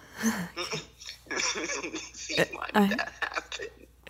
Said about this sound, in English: Watch my hiccups just finish. Oh my gosh. I can't believe I've never heard you have the hiccups before.